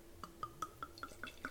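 Stella Rosa Stella Berry wine glugs into a glass in quick, regular pulses, each with a bright rising pitch as the glass fills, clear with no talking.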